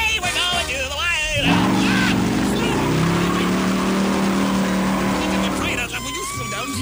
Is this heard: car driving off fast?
yes